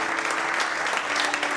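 An audience claps their hands together to give the Lord a clap, a dense, steady burst of applause, many overlapping claps forming a continuous bright crackle that holds at an even level throughout.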